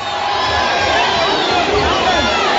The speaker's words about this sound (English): As the crowd started to get more and more vocal in this one.